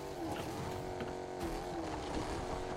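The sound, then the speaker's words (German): A powerful video game car engine drones steadily at high revs, loud, with a sustained harmonic roar and slight pitch wavering. “Das Auto muss doch irgendwas schaffen, wenn es so einen kranken Motor hat.”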